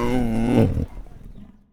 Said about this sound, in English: Once the tiger calmed down, he would talk into the microphone. He would just like, and it would be like he was sort of telling me the troubles I've seen.